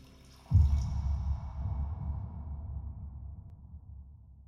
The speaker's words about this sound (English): Then, satisfied with his afternoon's work, he pours himself another drink.